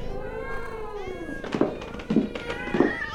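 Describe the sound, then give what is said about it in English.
Several cats meow and yowl at once, their drawn-out, wavering cries overlapping, with a few louder, sharper bursts rising out of the tangle toward the end. “More cats?”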